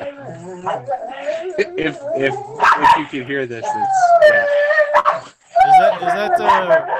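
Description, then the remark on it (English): Several dogs fighting bark, yip and howl together in a loud, drawn-out chorus of overlapping wails, with a person briefly talking over the commotion. “I'm gonna treat you to a chorus of my dogs fighting here.”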